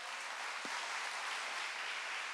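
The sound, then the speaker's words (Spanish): A crowd applauds Jesus during a church sermon, a dense continuous wash of many hands clapping at an even loudness throughout, with no voices standing out. “Dale un aplauso a Jesús.”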